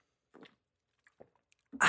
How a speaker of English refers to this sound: Let me grab a drink of water.